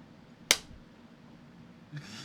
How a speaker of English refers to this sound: Get ready to clap for this one. I'm listening for the clap. I'm going 100% listen for the clap because this is that easy.